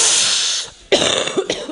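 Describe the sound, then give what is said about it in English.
A harsh, breathy cough bursts out loudly, followed by a short run of raspy hacking with a noisy, hissing quality and no talking. “Oh, I got that crazy that cough.”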